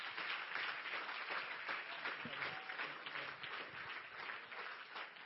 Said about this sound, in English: A round of applause, not for me, but for God. Amen.